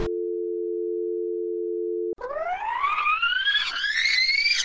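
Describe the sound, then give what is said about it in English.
A steady, flat telephone dial tone hums for about two seconds after the phone is put down and the line goes dead, then abruptly gives way to a louder rising, wavering electronic whine. “I put the phone down.”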